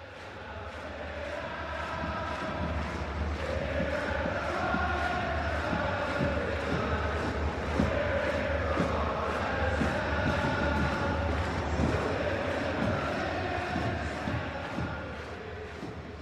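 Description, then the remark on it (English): A large stadium crowd sings together in a steady, sustained chant, a dense wash of many voices holding tones at an even, loud level throughout with no individual speech, during an MLS match between Real Salt Lake (RSL) and the New York Red Bulls. “Crowd singing, RSL now firmly in charge against the Red Bulls.”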